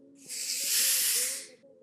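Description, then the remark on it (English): A pneumatic chair lets out a long, breathy hiss of escaping air that swells and then tapers off over about a second, with a faint low tonal hum underneath. “Pneumatic chair.”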